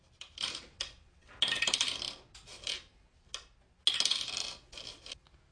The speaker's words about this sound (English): Let me roll my 3d8.